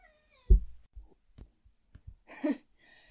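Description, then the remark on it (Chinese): A four-year-old cat named Liuyi (English name Louis) meows insistently because it is hungry and wants food, a short call followed by a longer, rising meow near the end, with soft thumps and shuffling noises in between. Fairly clear, no one speaking. “刚刚就是六一，他说他饿了，想吃饭。六一是一只很可爱的猫。”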